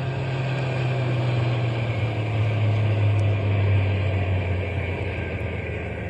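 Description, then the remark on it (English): A stopped truck's engine idles steadily at a bear feeding station, a constant low rumbling hum with a faint mechanical whir on top, unchanging throughout and with no voices. “We'll drive on a little bit and then stop the truck. But keep the motor idling so we can take off in a hurry if anybody comes along.”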